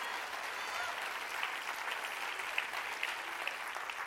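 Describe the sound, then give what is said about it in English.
A church audience applauds for God steadily, a dense, even wash of many hands clapping with a few sharper claps standing out, no voices on top, sustained at a moderate level throughout. “Come on, let's clap for him.”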